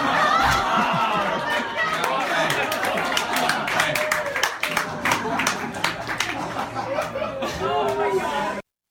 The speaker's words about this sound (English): Anytime a joke ends in an applause, that's and then the lady at the end.